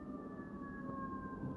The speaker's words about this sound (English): great, there's an ambulance going by. Or a fire truck, not an ambulance.